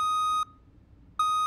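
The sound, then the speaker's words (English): A loud, steady electronic censor bleep covering a word in a video clip sounds, cuts out for under a second of near silence, then starts again, with no speech around it. “they bleeped it out and they kind of blurred out”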